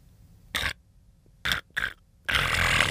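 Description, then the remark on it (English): Someone imitates a friend's loud, ugly snore with their voice, one they heard while staying at his place: three short, rough snorting bursts, then a longer harsh rasping snore that runs to the end. “Was it a snore? Yeah. It was a bad snore.”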